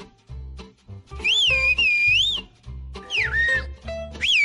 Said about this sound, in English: They all whistle. They whistle each other's names, crack jokes, tell each other stories, or just have mindless conversations. For them, the primary communication mode is whistling, not speaking.